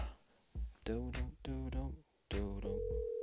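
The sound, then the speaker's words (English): A steady, purring ringback tone of an outgoing phone call starts near the end, faint and electronic, while a man hums and vocalizes melodically over it. “Phone's ringing.”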